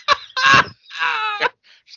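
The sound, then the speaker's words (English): A man's voice imitates a crow, letting out two loud, raspy caws, followed by a couple of faint, short trailing sounds. “I'm a crow.”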